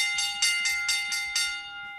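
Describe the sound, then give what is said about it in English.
A bell rings rapidly, about seven bright metallic strikes in quick, even succession, each one ringing on as the tones overlap, with no talking, marking bell lap time on the sports radio show In the Locker Room with Wolf and Starks on ESPN Pittsburgh. “All right, bell lap time.”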